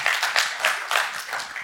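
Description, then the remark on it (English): A chapel audience claps together on cue after a count of five, in a steady, fairly loud rhythm, the many hands blending into a bright, continuous patter with regular pulses about every third of a second. “If you're going to clap, go ahead and clap.”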